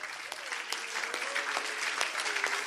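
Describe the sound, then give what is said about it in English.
An audience gives Jesus a praise clap during an English and Russian church service, a dense, steady wash of many hands with a few sharper claps standing out, and a faint sustained voice or tone beneath it throughout. “Can we just give Jesus a praise давайте clap right now?”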